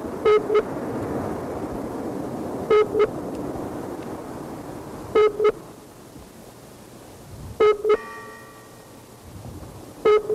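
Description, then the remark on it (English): A phone ringback tone sounds in a steady cycle of double rings, five bursts spaced a couple of seconds apart, clear and fairly loud over a low, constant background hiss. “Is that even ringing?”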